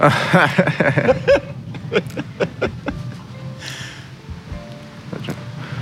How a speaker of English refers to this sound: All right. I'm gonna take a drink of water. Yeah, don't think this is milk, but it's water.